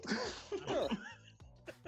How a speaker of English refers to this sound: Is that a new symptom of the Rona? Clearing your throat unnecessarily?